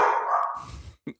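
A large dog lets out a deep, drawn-out bark, followed by a couple of short, lower huffs as it trails off.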